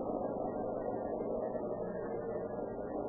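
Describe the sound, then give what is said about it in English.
A steady, low engine rumble fills the whole moment as a car approaches along a road and slows down, its muffled drone holding an even loudness with no voices. “through a crack in the garage door, Bright saw a car approach. Slow down.”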